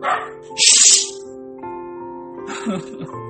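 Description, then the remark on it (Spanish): Several dogs barking in short, loud bursts, with a sharp yap near the start and another cluster of barks toward the end, over a steady low hum. “No, yo creo que me voy a otro sitio, lejos de donde están los perros, porque no me van a dejar grabar el podcast aquí donde estoy. Tengo que alejarme porque estaba en el frente y en el frente hay demasiados perros”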